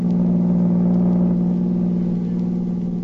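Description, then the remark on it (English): A car engine hums steadily with a low, droning rumble and a strong low-pitched tone, holding a constant level throughout as the vehicle drives along in the morning to General Tibbage's headquarters, with no voices. “Next morning, Agent B-9 and his assistant, Rita Drake, drove to General Tibbage's headquarters.”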